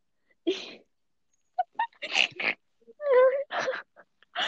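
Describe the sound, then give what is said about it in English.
A person imitates a pig, letting out a string of short, rough snorts and a squealing grunt in uneven bursts, fairly loud, with no talking in between. “Yes, Peppa Pig, come through.”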